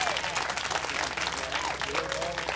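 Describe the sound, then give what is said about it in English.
Steady, dense applause from a crowd for a mic stand umbrella rig, many hands clapping at once in a continuous wash of sound that holds level throughout, with faint voices mixed in beneath. “Can we have a round of applause for mic stand umbrella rig up?”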